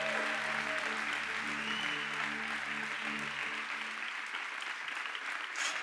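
A church audience applauds the worship team in a steady, dense wash of clapping that lasts throughout, with low sustained musical chords underneath for the first few seconds before they drop away.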